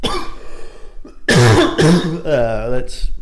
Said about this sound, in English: Coughing.